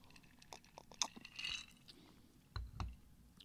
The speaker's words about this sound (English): Let me just have a quick little sip of my Lagavulin here.